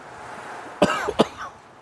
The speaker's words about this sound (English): That wasn't even a retrohale. I just coughed.